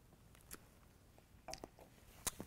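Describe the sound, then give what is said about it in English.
A quiet sip of green Chartreuse liqueur from a glass: a few short wet mouth clicks and a soft slurp spread over a couple of seconds, with no talking. “I'm going to take a little sip.”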